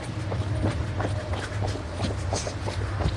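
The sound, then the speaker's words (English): A train's steady low rumble fills the scene as it begins to stop at a station, while quick footsteps thud and clatter along as people run alongside it on the tracks to catch it; no one speaks. “We are now running to try to catch the train.”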